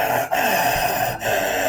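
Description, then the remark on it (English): A voice imitates the dry, raspy breathing of a man whose snoring has stopped, as if he has run out of moisture in his throat: a continuous hoarse, airy rasp with a strained throaty texture, broken by two brief catches for breath. “Like his head's back, but the snoring stopped, and it's almost like this rasp. Like he's run out of any moisture in his throat.”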